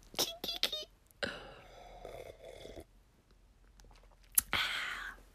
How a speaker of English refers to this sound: First, let me get a gulp of this wine.